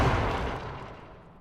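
The heavy stone lid of a sarcophagus in a chamber, pounded on from underneath, shatters in one loud, booming crash, its deep rumble and gritty debris noise slowly fading away over about a second and a half, with no voices.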